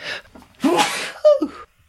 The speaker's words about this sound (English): And I'm going to sneeze.